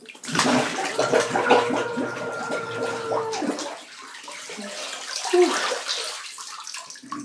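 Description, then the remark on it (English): A muffled, sustained scream from someone with their head underwater, a steady droning tone lasting about three seconds amid sloshing, bubbling water, followed by more splashing as they come up. “Okay, so I'm taking off my my glasses, and again, I'm going to put my head completely underwater, and I'm going to scream, so I need you to listen for the scream, okay?”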